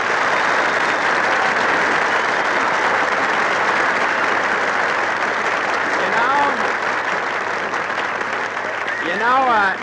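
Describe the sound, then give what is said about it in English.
A restaurant crowd in the Brown Derby breaks into loud, steady applause for Jimmy Stewart, a dense wash of clapping that holds for about ten seconds, with a few quick whooping whistles rising above it near the end. “You say, well, if it isn't Jimmy Stewart, and everybody in the Brown Derby applaud.”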